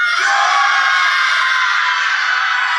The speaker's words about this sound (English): So I need you to really just, you need to yell your pet's name louder than the person that is yelling it next to you, okay? Just, we're going to do this one more time on the count of three. One, two, three.